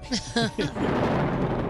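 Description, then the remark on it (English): Three short voiced sounds give way to a sustained, broad rumbling roar, a thunder sound effect introducing a segment of Nostradamus predictions, holding steady and fairly loud to the end. “There's the thunder.”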